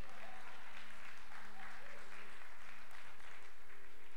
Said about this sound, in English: Now I want the same amount of applause for those of you that are going to tithe on the blessing.